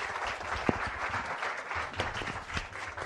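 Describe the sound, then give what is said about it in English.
A crowd applauds Undersecretary Michelle Flournoy steadily, many hands clapping together in a dense, continuous patter with a few sharper individual claps standing out, fairly loud throughout and without voices. “A big round thank of applause you.”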